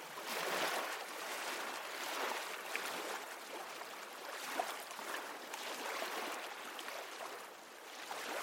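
Steady rushing water noise with gentle surges of ocean waves washing onto a beach, continuous with no voices.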